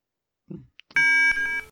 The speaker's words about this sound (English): guess that the beeping is part of the game.